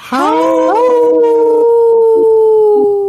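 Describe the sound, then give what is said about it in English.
A sustained, loud howl from several human voices imitating wolves, starting with a rising pitch then holding a long steady wavering tone for about three seconds, layered together, as a staple of the Native Roots Radio show's Howling for Wolves segment. “Howl! Woo! Ooh, good one. Good one. Good one, everyone.”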